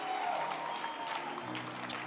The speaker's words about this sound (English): Can you clap your hands for church? You may be seated, glory to God. Oh, clap for church again. I'm just excited.